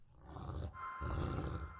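A wolf growls loudly, a deep, rough snarl that breaks briefly and then surges back even harder, rumbling continuously with no voices present.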